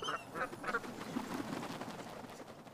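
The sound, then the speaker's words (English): Several nasal honking calls from geese ring out in quick succession at the start, then blur into a busy, overlapping chorus of flock calls at moderate volume. “Goose. Geese.”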